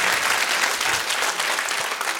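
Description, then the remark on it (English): An audience claps their hands in joyful praise to God, a dense, steady wash of applause that stays loud and even for a couple of seconds with no voices standing out. “Come on, clap your hands and shout to God with a joyful praise.”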